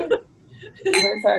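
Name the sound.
glasses clinking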